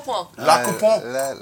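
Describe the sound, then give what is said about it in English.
Wine glasses clink together a couple of times in a toast, bright, with murmuring voices in the background; the glasses hold an organic, 100% Grenache wine. “But cheers, people. Here's to La Coupon.”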